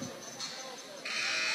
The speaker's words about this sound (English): There's the first buzzer.